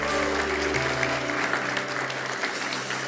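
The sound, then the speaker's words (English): A church audience applauds the young people back from camp, clapping steadily in a dense wash of many hands at a loud, even level throughout, with a low sustained hum beneath and no voices standing out. “Give them a clap one more time.”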